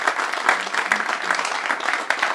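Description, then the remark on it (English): A steady round of applause from a crowd at the live announcement event for the JAKIB postgame show, dense overlapping claps sustained at an even, fairly loud level throughout, with no voices standing out. “Big round of applause for these guys.”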